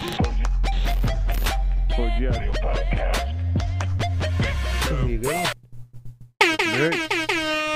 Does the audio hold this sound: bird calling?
no